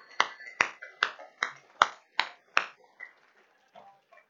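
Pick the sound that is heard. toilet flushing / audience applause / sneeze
audience applause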